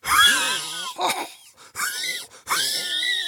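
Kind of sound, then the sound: human body sound, heavy wheezing breathing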